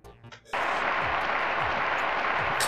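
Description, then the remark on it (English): A short voice gives way to sudden, polite golf-clap applause during a game of Jeopardy: a steady, even wash of clapping with no cheering or whistles, holding at one level until the end. “I love how understated that applause is. It's a good applause, right? It's not like cheering, it's like a golf clap.”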